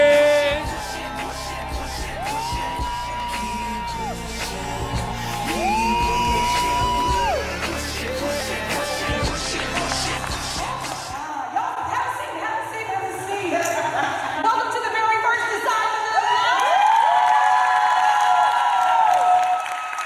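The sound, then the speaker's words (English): A crowd cheers, yells and whoops loudly for about twenty seconds, with rising pitched whoops and scattered applause under the dense roar, which thins slightly partway through before swelling again. “If you're ready to decide to live, make some noise!”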